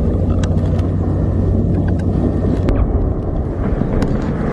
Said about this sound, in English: These are helicopters attacking Israeli wounded.